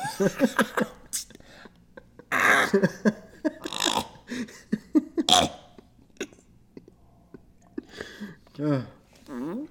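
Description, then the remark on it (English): A series of wet, sputtering mouth-fart noises mixed with strained grunts, coming in short irregular bursts with voiced, wavering tones between them, some loud and blaring, others quick and choppy. “Nice mouth fart.”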